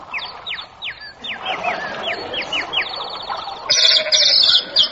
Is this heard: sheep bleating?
yes